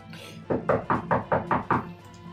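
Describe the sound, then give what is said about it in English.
Six firm knocks on a wooden door in quick, steady succession, fairly loud, with no voices over them. “And you hear a knock at the door.”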